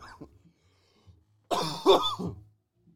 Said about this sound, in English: Why you switch it to me when you cough? Why can't you watch? Why can't they watch you? Nah, nobody wants to watch me cough.